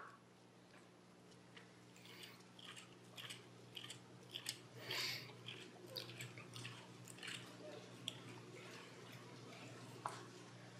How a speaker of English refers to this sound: Who loves the sound of Bible pages turning? I love it. It's beautiful.